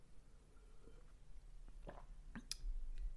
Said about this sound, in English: And so I think what I'm going to do is take a drink of water here. And I invite you to do the same if you have some.